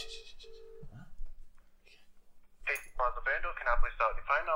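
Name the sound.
phone call dialing tone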